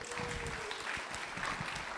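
Audience applause for the band at a church service, a dense steady wash of many hands clapping at once, loud and continuous with a few faint cheers and a brief whistle-like tone early on.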